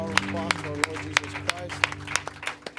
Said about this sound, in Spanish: Dar un aplauso a nuestro Señor Jesucristo.